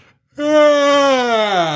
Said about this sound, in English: That's a level 5 yawn right there.